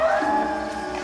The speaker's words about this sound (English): It is distracting that the wolf's howl is one howl and they play it, like they have a button they just press and it plays.